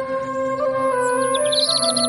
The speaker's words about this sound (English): Birds chirping.